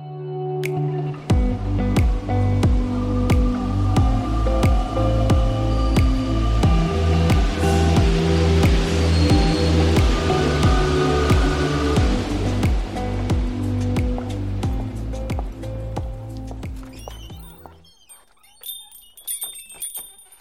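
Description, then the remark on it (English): Steady rain falls on a city street in Brussels on a cloudy day with a high of 48 degrees Fahrenheit, with many distinct drips and splashes over a continuous wash of water. A low rumbling hum runs underneath until the sound thins out near the end. “It is a cloudy, rainy day in Brussels with a high of 48 degrees Fahrenheit, 9 degrees Celsius.”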